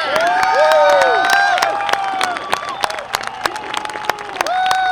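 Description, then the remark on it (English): A crowd at JPL erupts in loud cheering and applause as the Mars rover touchdown is confirmed, with sharp overlapping claps, whoops and high-pitched shouts rising over a sustained roar of excited voices. “Well, the crowd went wild, of course, and well, they should have.”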